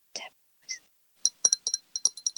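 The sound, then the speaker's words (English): Bright taps on a martini glass ring out in a quick series of about eight clinks after a couple of soft breathy sounds, each note short and high-pitched. “Martini glass here.”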